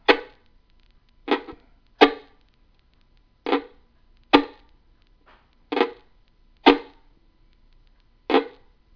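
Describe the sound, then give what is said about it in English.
Eight sharp, solid thwacks of an axe chopping wood outdoors in a neighbour's yard, struck at an uneven pace about a second apart, each hit ringing briefly before fading; no voices, just the chopping. “Well, he was chopping wood.”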